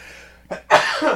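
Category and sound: human body sound, sneeze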